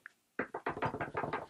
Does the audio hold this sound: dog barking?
no